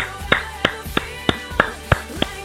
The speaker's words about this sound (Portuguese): Estou aplaudindo.